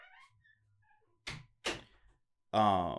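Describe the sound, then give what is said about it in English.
A door being closed as someone leaves to use the bathroom: two quick, dull thumps close together after a near-silent stretch, followed immediately by a voice starting to speak. “I'll wait till you close the door.”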